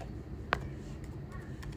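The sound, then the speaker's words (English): Sparse, quiet computer keyboard typing at work: one crisp key click stands out, followed by a few fainter taps spread unevenly over a low background hum. “I'm typing still white.”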